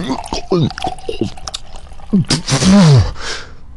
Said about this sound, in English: Pour some scotch on it.